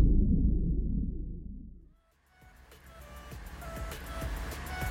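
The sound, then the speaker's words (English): A car engine rumbles low and steady for a couple of seconds, then cuts off abruptly, giving way to quieter clicks, light clatter and faint tonal sounds. “Okay, engine's hot. Ready for takeoff.”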